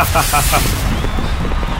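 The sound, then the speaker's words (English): Fireworks go off in a loud, dense burst: booming thuds and crackling pops, with a thin whistling streak rising partway through, filling the short stretch without pause. “Can we get like some fireworks, maybe?”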